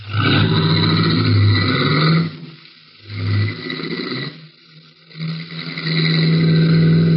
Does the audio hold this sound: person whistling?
no